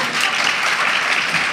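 A crowd claps steadily, a dense, even wash of many hands with no pauses, fairly loud throughout and no voices standing out.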